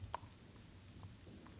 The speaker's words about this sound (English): And the rain continues its gentle song on the colorful glass windows.